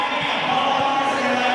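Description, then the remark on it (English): A steady, dense wash of crowd noise from a couple hundred people, some watching from four stories up, at a lip-sync drag comedy performance: many overlapping voices murmuring and cheering at a constant loud level, with faint thumps underneath and no single voice standing out. “You hear that crowd.”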